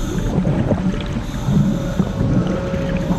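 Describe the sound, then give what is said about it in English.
A dense, steady roar of pounding rain and crashing ocean waves at a stormy sea surface, the rain hitting a diver's mask, loud, with a low churning rumble and a faint whistling tone underneath; no voices. “Upon reaching the stormy surface, he is slammed with the noise of pounding rain against his mask and crashing waves.”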